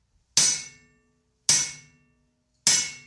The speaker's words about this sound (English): the sound of hammers and the fumes of coal smoke surround me